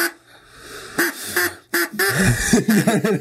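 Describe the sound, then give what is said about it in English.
A loud duck call quacks repeatedly in quick bursts, raspy and nasal, with short pauses between runs of honking quacks, sounding like a hand-blown duck caller. “Oh, okay, now the duck noise is ruined.”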